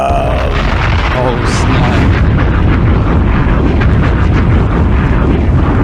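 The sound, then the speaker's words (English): A loud, deep explosion roar that rumbles continuously for several seconds, dense and booming, with no pause or quiet moment throughout. “Well, that was an explosion.”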